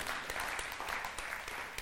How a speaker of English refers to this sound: Yeah, you can cheer that. That's all right.